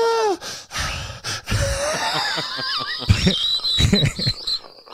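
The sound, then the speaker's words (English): Loud, phlegmy throat noises from someone with a cough, right into a microphone: wet gurgles and rasps mixed with squeaky, warbling wheezes that rise and fall in pitch, continuing for several seconds without speech. “What is that noise? Do you have phlegm in your...”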